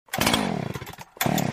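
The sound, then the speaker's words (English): A small chainsaw engine sputters to life, revving in a loud buzzing burst, dipping briefly, then roaring up again, with no voices. “Having trouble starting your trimmer, chainsaw, or leaf blower?”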